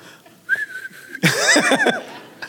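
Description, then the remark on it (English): A person whistles to call a donkey: a steady, held whistle tone followed by a burst of quick sliding whistle notes mixed with breathy vocal sounds, fairly loud. “I think … was probably whistling for the donkey.”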